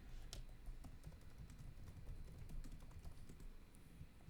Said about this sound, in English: If you can hear us typing, I'm sorry